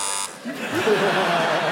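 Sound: quiz show buzzer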